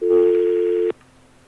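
A phone call being hung up: a loud, steady telephone line tone holds for about a second, then cuts off abruptly with a click, leaving only a faint, low hum.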